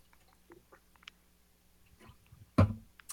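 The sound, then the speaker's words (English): Someone drinks water: soft clicks and swallowing sounds, followed by a short, sharp thud near the end. No one speaks. “I had to drink my water before I said this.”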